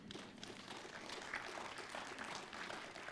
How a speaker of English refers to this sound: They're serving Christ. They're serving the elderly. They're serving the community. They're serving this church. They're serving. And I'm telling you, when your heart is right and tender with God, you serve God. Amen. Go ahead and clap.